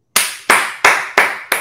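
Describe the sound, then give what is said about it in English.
A single person claps five times at a steady, even pace, each sharp clap loud with a brief decay, and no one speaking. “I'm just clapping because I'm glad someone said it, right?”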